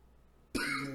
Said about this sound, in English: Dog, are you okay over there? Yeah, I don't know. I'm coughing.